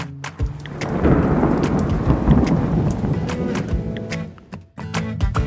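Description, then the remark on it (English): A thunderstorm rumbles loudly and steadily, deep thunder rolling under a broad wash of heavy rain, with sharp crackles and drops scattered through it for several seconds. “You can also see its famous Great Red Spot, a place on Jupiter where there are constant storms and hurricanes.”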